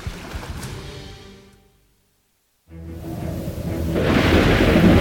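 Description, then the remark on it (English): Deep rumbling noise of a violent storm at sea driven by a powerful wind, threatening to sink a ship, with low booming swells and hissing wind or rain, fading to near silence before surging back louder and broader. “While out to sea, the Lord sent a powerful wind, causing a violent storm that threatened to sink the ship.”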